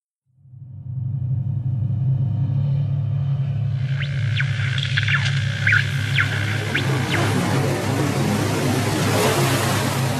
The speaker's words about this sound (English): Also, it helped that the opening music of each section is the same as the short promo that originally drew me to Interference. I could swear it was scientifically designed to raise blood pressure. Here, I'll play it for you.